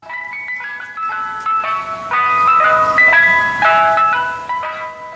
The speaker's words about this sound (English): Here comes the ice cream truck.